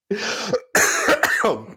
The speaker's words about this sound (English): You got a little cough is still there. It looks like exactly. I got a little bit of a cough going on, and I don't have that with the new microphone.